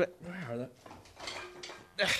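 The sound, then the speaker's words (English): A brief vocal sound gives way to clattering knocks of a light metal beer can tipping over, then a pair of wooden drumsticks being picked up from a corner, moderately loud, ending in a sharp scrape. “Yeah, I had to knock over a beer can to get my sticks.”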